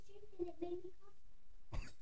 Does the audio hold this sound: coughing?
yes